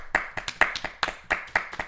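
A handful of people clap in an uneven, brisk rhythm to celebrate someone's first official stunt driving credit, sharp overlapping hand claps of similar loudness repeating for a couple of seconds with no voices.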